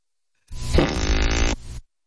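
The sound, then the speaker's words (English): A single loud, wet fart sound effect, used as a phone alert for a live show, lasting just over a second, a sputtering low rumble with a buzzy, flapping texture, played alone with no talking. “when I do a live show, it'll alert you, and it's a big fart sound”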